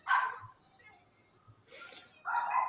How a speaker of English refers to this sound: Let me get this dog.